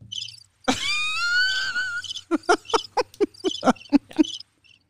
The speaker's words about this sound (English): I think we should enter some cricket sounds right there. I don't have crickets. I don't know what I have that one. Oh, yes, I do. Hold on.